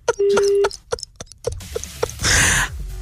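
A phone call is hung up: a short, steady electronic tone sounds, followed by a series of sharp handset clicks and clatter, then a brief burst of hissy noise.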